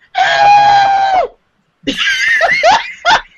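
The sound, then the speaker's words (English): A loud, sustained high-pitched scream rings out for about a second, followed after a short pause by a burst of shrill, wavering shrieks and giggly cries. “That was the best girl scream I've heard.”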